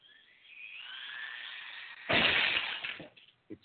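drinking glass shattering

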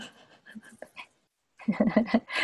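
dog panting and whimpering

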